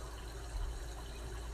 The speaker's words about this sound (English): listening to the sound of the water. Focus on that. Now, imagine that the energy of that water is flowing through you as the stream is flowing.